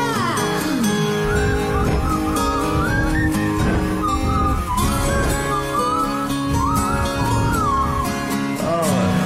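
A clear whistled melody glides and wavers over a full band recording, with guitars and steady percussion underneath, the whole mix loud and continuous throughout.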